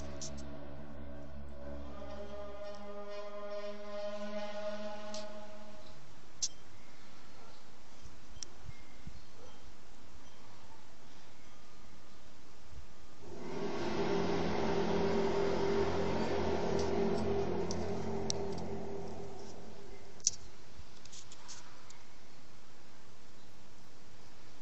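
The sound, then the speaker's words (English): An eerie, low brass-like drone with layered tones, one of the strange trumpet sounds heard from the sky, groans for several seconds, then fades into a steady rushing hiss that swells midway before settling back to a faint background hum. “Let's put in strange trumpet sounds or strange sounds from the sky into a search engine.”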